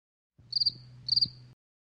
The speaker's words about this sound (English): I'm putting in a cricket noise over that fucking pause you just had.